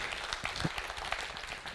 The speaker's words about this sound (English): And I got to tell you, our worship team, and I know I've been saying this a lot, but they're getting better and better every week, and not just them. You can clap for them. I think they're awesome.